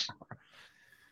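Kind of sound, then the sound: human body sound, sneeze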